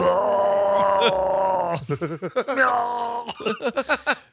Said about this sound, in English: A shark yelling makes no fucking sense and is the most absurd shit I've ever seen. Or heard. It's fucking crazy.